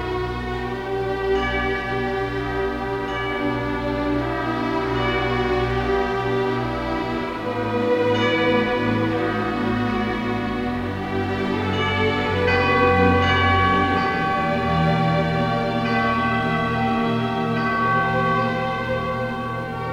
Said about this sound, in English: It has no superfluous distractions nor concession to musical ideas, with the exception of a poetic portrait of early morning in Rome with its symphony of church bells.